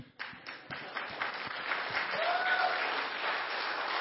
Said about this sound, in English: You know, can we applaud the drummer?